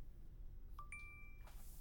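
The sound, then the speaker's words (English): A short, bright electronic ding from a mobile phone notification rings out once, with clear sustained tones, followed by a soft rustle over a quiet low background hum. “Sorry about that. I thought I turned my phone off.”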